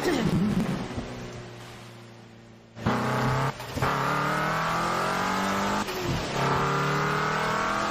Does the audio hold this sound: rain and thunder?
yes